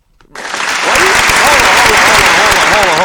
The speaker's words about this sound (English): Like, let's do that properly. The intro properly, right, man. Get the applause ready.